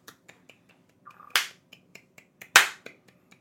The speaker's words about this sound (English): This is when we clap.